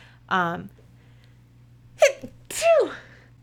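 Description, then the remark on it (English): A loud sneeze: a voiced, rising intake of breath, a pause, then a sharp explosive burst trailing into a breathy vocal tail, heard on its own with no talking. “Excuse me, I just fucking sneezed.”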